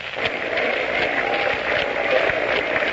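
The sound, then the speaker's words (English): A ballpark crowd keeps up scattered, half-hearted hand clapping, a steady wash of uneven claps with faint individual smacks poking through, no voices standing out. “The crowd is beginning a sort of a half-hearted hand clapping.”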